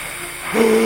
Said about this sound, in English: You hear more gas being pumped into this room.